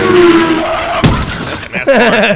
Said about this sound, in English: That's a NASCAR getting into a wreck. Crash, bitch. Crash my car.